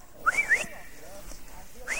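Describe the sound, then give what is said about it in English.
A person whistles two quick rising notes, like a short calling whistle, fairly clear, then a quieter voice murmurs briefly and a faint third whistle starts at the end. “Right, the king of Israel will arrive here on the earth and he'll whistle for them.”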